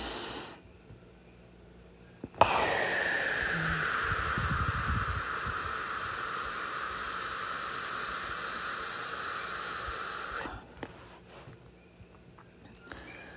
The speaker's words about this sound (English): We're breathing together, everybody. That's how I'd like to start Space Corp.